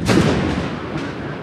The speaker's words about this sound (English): With a terrible sound, Ariel enters, claps her wings thunderously, and the banquet vanishes.